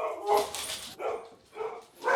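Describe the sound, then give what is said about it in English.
Dogs barking at something at the front door in quick succession, four sharp, fairly loud barks spaced unevenly over about two seconds, with no voices. “What are they barking at?”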